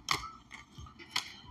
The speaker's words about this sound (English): But, yeah, so we about to get to it as soon as I can fucking find these fucking scissors. They're somewhere around here. I found them.